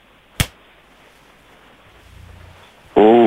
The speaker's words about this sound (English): Here comes slap number 2. I'm preparing for slap number 2. I'm watching him. 3, 2, 1.